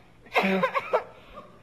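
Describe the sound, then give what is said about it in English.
A short fit of whooping-cough coughing: three or four quick, harsh hacks run together in under a second, fairly loud, followed by quiet. “we'll show them there's at least two in the house who won't get the whooping cough, won't we?”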